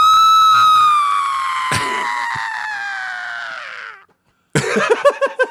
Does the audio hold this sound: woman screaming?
yes